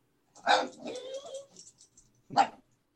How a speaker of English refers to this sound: She wants to play. She's wanting to play, so she's giving me the bow and running around in circles and starting to bark at me.